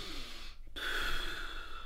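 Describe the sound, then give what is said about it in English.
A voice imitates someone's heavy, exaggerated breathing: a long airy inhale, a brief pause, then a strong hissing exhale, with no words spoken. “Breathing? It's just the way you're doing it.”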